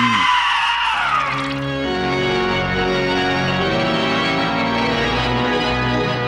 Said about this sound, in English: Now scream!